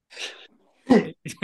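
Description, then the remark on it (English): A quick series of sneezes from a man: a soft breathy one, then a sharper, louder burst followed by two short snorts in quick succession, with no talking. “He sneezes at my list.”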